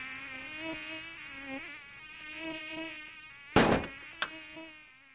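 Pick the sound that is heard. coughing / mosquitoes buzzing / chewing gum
mosquitoes buzzing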